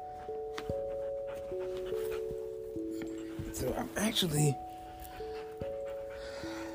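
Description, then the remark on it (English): A dog, upset by fireworks, pants and whimpers in a brief, breathy burst partway through, while a person talks and a steady tonal hum runs underneath. “I gotta get away from the dog.”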